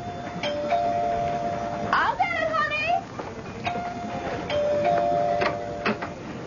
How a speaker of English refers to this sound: It was a night in June, a beautiful spring night. Daddy was in the study when the doorbell rang.